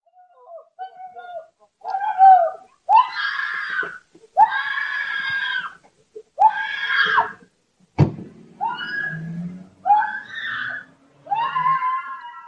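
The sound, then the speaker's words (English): A woman screams over and over in loud, drawn-out bursts separated by short gaps, with a sharp thud near the middle and some shorter cries toward the end, after being attacked and robbed in front of her home on a Sunday afternoon in the Lakeview neighborhood of Chicago. “Do you hear that woman screaming?”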